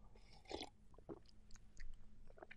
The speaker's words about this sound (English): So, I gotta take my sip of coffee first.